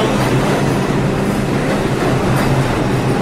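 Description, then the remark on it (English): A subway train, the 2 train, arrives with a loud, steady rumble and rattle of cars on rails filling the space without letup. No one speaks. “When you see a subway train, you go, woo!”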